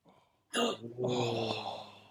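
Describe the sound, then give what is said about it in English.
A sudden sharp intake of breath breaks a brief quiet, then slides into a drawn-out, voiced exclamation that holds steady for over a second before fading slightly. “You did it. You got a gasp.”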